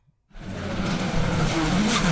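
A loud, roaring engine bursts in after a brief silence and holds steady, with gravelly tire noise and skidding as a rally car charges hard over rough ground.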